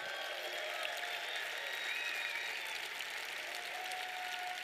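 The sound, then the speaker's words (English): Steady applause from a conference audience, a dense wash of many hands clapping at an even, sustained level for several seconds with no voices rising above it, given for the event's organizer. “Clap it up for Grant for putting this together.”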